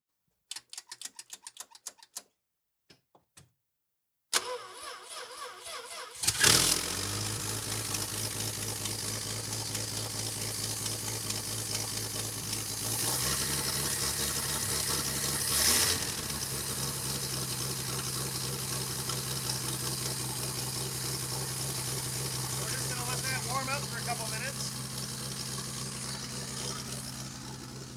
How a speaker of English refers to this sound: Wade Pearson, who's about to start the engine of the Little Tow at Northeast Slopes